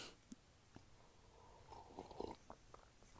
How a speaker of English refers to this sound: Take a sip of coffee there.